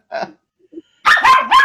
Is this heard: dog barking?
yes